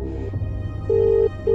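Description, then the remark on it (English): An outgoing phone call rings unanswered through the earpiece: steady electronic ringback tones repeat with pauses between them over a low background hum, and nobody speaks. “No answer.”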